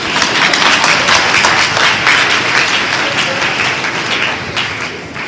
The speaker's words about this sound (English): All right. Clap for the evangelist.